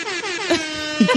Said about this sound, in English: Know what that was? That was an air horn coming straight off my iPad. And through our new mixer. Through a very cheap but well-reviewed audio mixer.